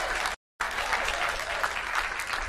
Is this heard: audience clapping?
yes